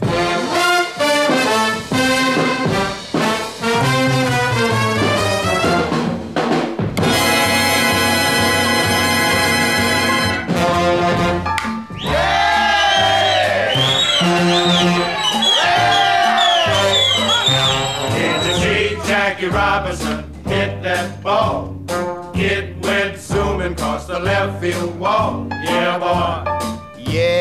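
A lively big band swing number plays at full volume, with punchy brass blasts, a steady bouncing rhythm section, and a vocal line weaving over the horns: a 1949 orchestra recording of a song.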